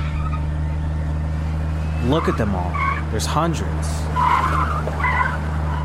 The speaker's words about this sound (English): We hopped onto the Henry Hudson Parkway. Car accidents littered the road. Mark weaved through quickly.